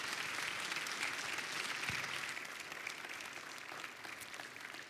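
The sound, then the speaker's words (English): Steady applause from an audience thanking a woman as she steps out. A dense wash of many hands clapping fills the whole stretch at an even, sustained, fairly loud level without pause. “But as she does, can we give her a round of applause and just tell her thank you?”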